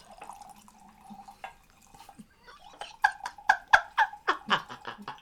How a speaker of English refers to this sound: Yo. She was pouring a drink, guys.